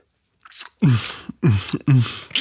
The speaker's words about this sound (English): So if you could excuse like the heavy breathing and munching during this recording, that'd be grand.